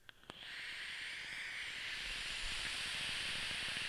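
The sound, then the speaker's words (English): A vaping device with a 0.3 single-coil setup at 45 watts draws air with a steady, high, breathy whistling hiss that runs unbroken for several seconds, preceded by a couple of quick clicks at the start. “What you can knock is that whistle. That is a whistle.”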